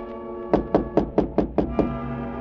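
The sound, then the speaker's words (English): A quick, even series of about seven knocks on the door of a lodging room, crisp, with no voices, fading into a faint room hum afterward. “The little cockney showed me to my room, and it was about a half hour later that I heard a tap on my door.”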